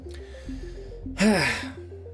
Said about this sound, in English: Another yawn.